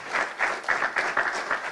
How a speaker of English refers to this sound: I think he deserves a hand clap for that. Glory to God.